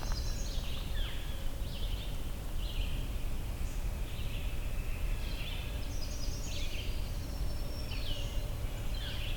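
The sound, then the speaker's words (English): A northern flicker calls repeatedly, giving a series of short, bright, high notes in loose clusters over a steady low rumbling background, with no talking. “Northern flicker.”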